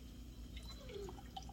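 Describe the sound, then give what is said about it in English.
Beer pours into a glass with a soft, steady trickle and a few faint drips and fizzy splashes, quiet, with no one talking. “That pours nice.”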